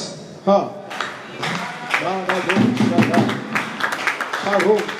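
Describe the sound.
An audience claps in scattered, uneven bursts of sharp hand claps that continue throughout, while a voice speaks loudly over the clapping.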